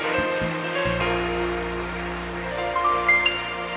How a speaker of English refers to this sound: Clap for Jesus. Clap for Him.